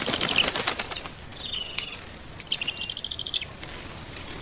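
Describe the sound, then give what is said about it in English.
Black kite wings flap in a quick, rustling burst, followed by thin, high whistling calls in short repeated notes, with no voices. “two brothers, Nadim and Saud, who dedicate their lives to rescuing black kites. They're beautiful birds, raptors that dominate the New Delhi skies”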